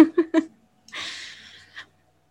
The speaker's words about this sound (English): Can you hear my dog snoring? If I'm talking, can you hear it? Because I can hear it, and obviously.